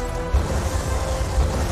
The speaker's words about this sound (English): Explosions are still going.